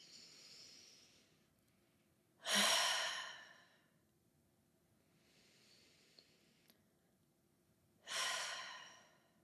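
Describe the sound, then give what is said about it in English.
Two slow, deep breath cycles taken as a short group breathing exercise: soft airy inhales followed by louder, breathy exhales that sigh out strongly, with no talking. “Let's just breathe for two breaths and just see how we feel from that.”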